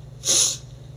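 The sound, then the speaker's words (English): A single short, breathy sniffle, a quick nasal intake of air lasting about a third of a second, over a faint low hum, with no one speaking. “Oh, awkward, inappropriate sniffle.”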